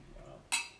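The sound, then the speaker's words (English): Glasses clink together once in a toast, a bright, ringing chime that fades over a fraction of a second after a faint low murmur. “Drink, wingspan. Cheers. Drink.”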